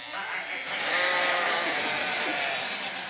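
animal, sheep bleating

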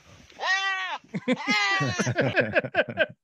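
animal, goat bleating in distress

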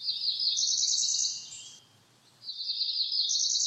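bird, cerulean warbler song

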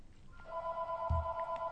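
signal or alarm, telephone ringing

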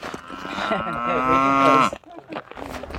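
animal, cow mooing

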